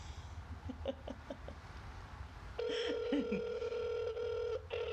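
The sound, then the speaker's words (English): A string of short phone dialing beeps as a call is placed to a mother, then a steady electronic ringing tone over the line. It is fairly loud, with faint background hiss and no talking. “So we're calling our mama.”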